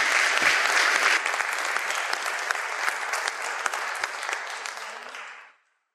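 An audience claps for a woman as she comes forward, in a dense, steady burst of applause, loud at first and easing slightly before stopping abruptly after about five and a half seconds. No one speaks.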